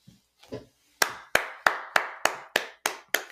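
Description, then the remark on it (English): A pair of hands claps about eight times in a steady, even rhythm, each clap sharp and crisp, after a couple of soft muffled taps at the start. No voices. “I am applauding this article.”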